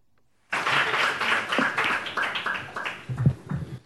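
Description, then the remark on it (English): An audience in a committee room at the Tennessee state capitol, during a special session on public safety, breaks into steady, dense clapping that starts abruptly and continues for several seconds, with a few voices murmuring underneath toward the end. “Are we going to quiet down and listen, or are we going to sit there and clap?”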